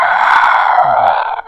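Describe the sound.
A voice imitates a burrowing creature's screech: one loud, raspy, sustained shriek lasting over a second, breaking off with a short squeaky upturn at the end.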